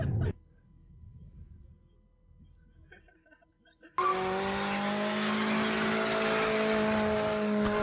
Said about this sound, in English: I mean, dude, it does not sound bad. No, it's fine. They're doing burnouts in this car.